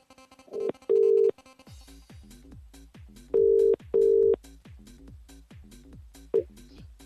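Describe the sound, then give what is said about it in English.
A few short dialing tones as a live radio show calls a listener, then a ringing phone sounding in clear paired bursts, loud, over a busy rhythmic musical backdrop, with no one talking. “Well, stand by your phones, ladies and gentlemen. We're going to be calling someone next.”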